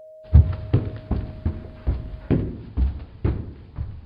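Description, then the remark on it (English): Someone knocks at a door: a steady series of about nine dull, hollow thuds, evenly spaced roughly every half second. A faint steady hum sits underneath for the first half. “There's somebody at the door, I think.”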